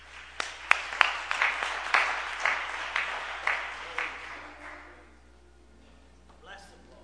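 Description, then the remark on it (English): A crowd claps together, giving God a big hand clap, in a burst of applause, dense and steady for about four seconds before thinning and fading out, with a few faint voices underneath at the end. “Let's give God a big hand clap.”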